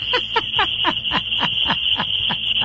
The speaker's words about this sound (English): What the heck? If that's an alarm, that's the strangest sounding alarm. I don't think that's going to scare away any burglar. It might scare away like chipmunks and squirrels. What the hell was that? Well, I forgot that I had set the alarm last night